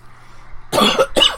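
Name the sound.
coughing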